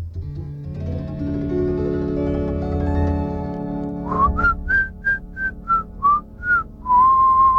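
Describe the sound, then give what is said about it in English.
Someone whistles a tune, a run of short, bright, separate notes that ends on a long held tone. Before it, a low sustained droning chord plays for several seconds. “But what about your whistling career?”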